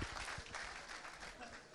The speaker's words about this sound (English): Well done. Round of applause.